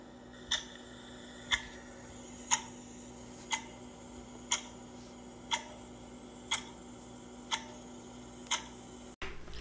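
sound effect, clock ticking

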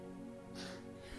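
human body sound, sneeze

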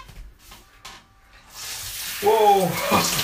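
household object, shower water running

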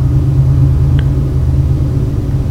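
vehicle, train sound effect

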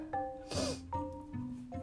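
human body sound, sneeze

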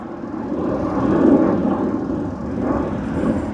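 vehicle, airplane flying overhead

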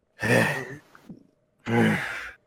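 human body sound, heavy breathing

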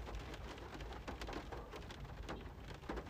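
nature, rain and thunder

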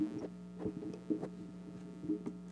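fault, electrical hum

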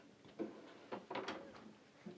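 household object, door being closed

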